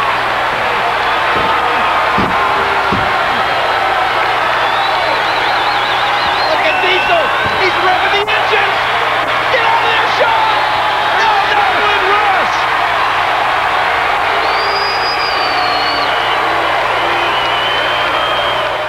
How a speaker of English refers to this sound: Listen to this capacity crowd.